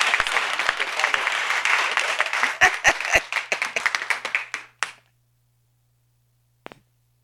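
A small crowd applauds, dense clapping for a few seconds that thins into scattered individual claps before fading out, followed by silence and one last faint clap.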